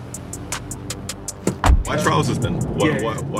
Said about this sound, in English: We're going to jump in the car now and head towards Soho